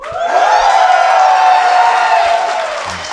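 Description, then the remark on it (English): A large audience cheers loudly when asked for a big cheer, a sustained wash of shouting and whooping voices that swells quickly and holds for several seconds before easing slightly. “If you think NA is going to show up this week, give a big cheer.”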